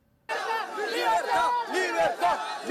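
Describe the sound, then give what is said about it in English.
A large crowd of migrants in a caravan chants "liberty" and shouts together in loud, overlapping voices as it charges through a checkpoint in Mexico while the Mexican National Guard watches, rising and falling in rhythmic surges with no pause after the sudden start. “Chanting liberty, the caravan charges through a checkpoint as the Mexican National Guard stands by watching.”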